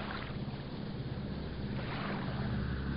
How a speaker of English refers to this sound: In the dawn sky above the Alpine Lake, Bang heard the sound of a twin-engine plane winging low over the lake.